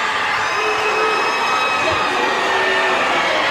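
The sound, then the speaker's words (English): The Bird Squad student section, clad in pajamas, roars in a dense, steady wall of crowd noise, with cheering, whoops and shouted voices blending together at a constant loud level throughout. “Now that that's all settled, the Bird Squad starts making noise, all pajama clad, knowing that they don't have classes on Monday.”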